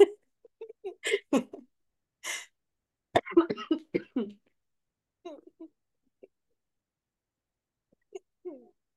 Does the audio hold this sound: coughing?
yes